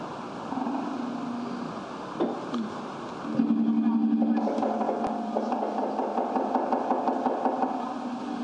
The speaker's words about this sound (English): You hear the car in the background where they're driving and shooting. That's 2 cars shooting at each other.